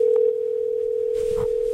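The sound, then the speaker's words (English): A telephone ringing tone on an outgoing call to the company Traxxas hums steadily at a single mid-low pitch for nearly two seconds without a break, with faint rustling underneath near the end before it cuts off. “So why don't we give them a call?”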